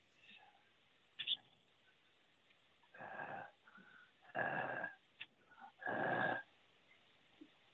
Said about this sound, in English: Sir, we hear you breathing.